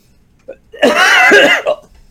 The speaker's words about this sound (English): I have cough and hiccups. Bummer. By the way, right before we went on air, I was drinking some water, and it went down the wrong tube.